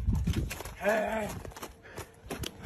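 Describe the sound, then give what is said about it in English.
Several irregular hoof clomps thud hollowly as a horse steps up into a trailer, with a brief tonal vocal sound rising in the middle of the steps. “Okay, now the horse is in the trailer.”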